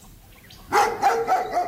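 A dog barks in a quick series of four or so sharp yips after a moment of quiet, each bark bright and clear with no one talking.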